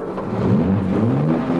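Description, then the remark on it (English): The engine of Black Beauty, the Green Hornet's sleek black car, roars to life and revs in a secret garage: a steady low rumble with rising and falling pitch sweeps, loud and continuous with no talking. “As Black Beauty roars into life, Cato presses a button on the dashboard.”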